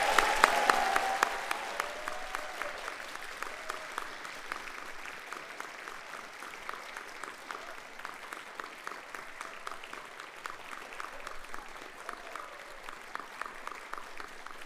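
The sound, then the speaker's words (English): An audience at an evening concert claps for the student musicians, the applause loudest at the start with a few whoops and cheers, then settling into a thinner, rhythmic clapping that continues throughout. “Can everyone please give another round of applause to these amazing students?”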